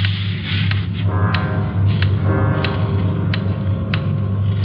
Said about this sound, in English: Loud clock, ain't it?